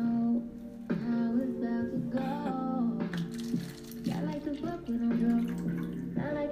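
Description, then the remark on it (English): Chardonnay white wine glugs steadily into a glass, a continuous pour with shifting gurgling tones lasting several seconds, with no pause. “Pour me some more Chardonnay.”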